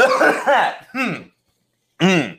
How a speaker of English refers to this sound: You guys ever need to do that? Just like clear your throat just so obnoxiously?